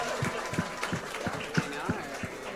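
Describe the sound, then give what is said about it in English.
At an evening stage show, a crowd applauds a contestant who has just been eliminated. The clapping is a steady wash, while a regular low thumping pulses underneath at a quick, even pace. “Give her a big round of applause as well.”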